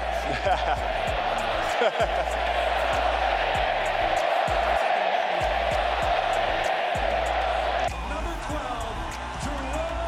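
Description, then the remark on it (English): A packed hockey arena crowd in Calgary roars in celebration of a goal, a loud, sustained wall of cheering punctuated by sharp thumps and bangs, easing slightly in the final seconds. “They're on their feet in Calgary.”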